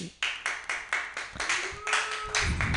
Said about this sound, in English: I kind of hate that I get applause for that because I'm always ready to jump into the punchline, you know, because I hate eye contact.